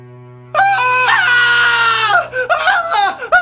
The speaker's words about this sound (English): What is happening? What is it? Gilman? What is screaming?